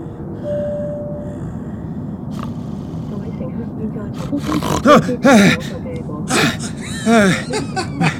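Loud, rumbling snoring drones on steadily, growing rougher and more throaty toward the end with several harsh, vocal-sounding snorts.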